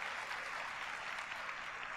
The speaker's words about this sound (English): Oh, that's a very nice applause you're getting, Junior. Very polite. It sounds like a polite crowd at Carnegie Hall.